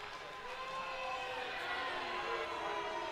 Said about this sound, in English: You can hear the crowd.